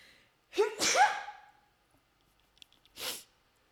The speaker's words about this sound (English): And holy shit, I'm gonna sneeze. Hold up.